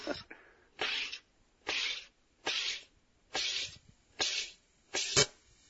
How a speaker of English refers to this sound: There you go. That's that sound. There you go. Oh, so that buzz is what you want. You want to get that first buzz is what we call a light carbonation, something similar to, let's say, a Perrier.